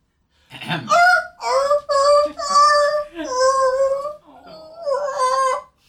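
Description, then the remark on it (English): A person mimics the long, mournful whimper of a wolf that has careened into flames and caught fire, a fairly loud series of drawn-out whining cries that rise and sag in pitch across several connected bursts. “And catches on fire, and you hear it let out a really sad whimper that just goes on and on.”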